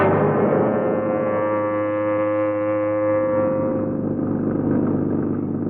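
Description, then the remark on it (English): An old taxi's car engine runs steadily and loudly, a droning, harmonic hum that holds for several seconds with a rougher, rattly texture toward the end. No one speaks. “I said, where did you get this pile of junk? Out of a car museum?”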